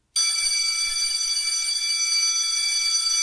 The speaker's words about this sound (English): The bell means it's time to get out of here, so I'm going to let you go.